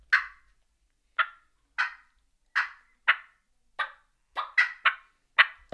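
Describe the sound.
A series of about eleven short, sharp turkey clucks made on a game call, spaced irregularly and speeding up toward the end, clear with silence between them and no talking.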